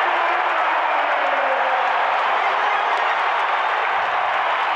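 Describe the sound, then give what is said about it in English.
A large arena crowd at Vivint Smart Home, on their feet during a Utah Jazz basketball game as Utah leads 85-80 on a 15-4 run, roars with cheering and sustained applause, a loud, dense wash of noise that holds steady for several seconds without letting up. “Crowd on their feet at Vivint Smart Home.”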